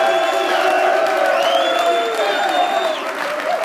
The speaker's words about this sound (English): Let's have another round of applause for all the volunteers here at the University of Tennessee.